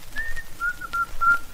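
man whistling a tune

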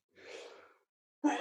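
sneeze

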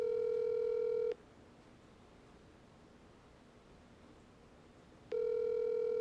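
phone call ringing tone

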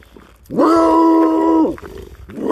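neighbor's dog barking outside

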